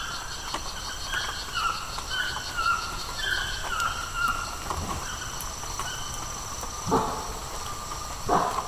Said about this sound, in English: So what are those sounds at the end? It kind of sounds like a dog barking. No, it's probably a howler monkey. The males will call early in the morning, late at night.